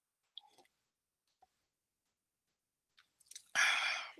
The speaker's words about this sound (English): See, I just went for another sip, but I'm going to put this back in the fridge now because I have to go out soon and I don't want to get plastered.